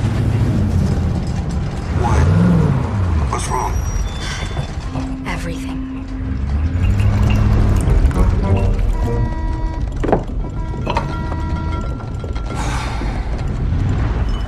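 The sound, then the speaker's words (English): The heavy engine of a Ford F-1000 pickup truck rumbles low and steady, swelling in a couple of revs, while creaking and rattling mechanical noises clatter over it, loud throughout. “Yeah, what truck, what Ford F-1000 has the ability to shake an entire house?”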